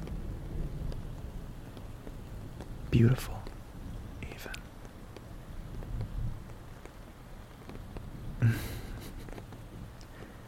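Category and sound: nature, rain falling at night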